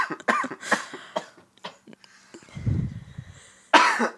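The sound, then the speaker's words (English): A run of harsh coughs in short bursts, followed by a rougher, lower hacking spell and one last loud cough at the end. No talking. “There's the cough.”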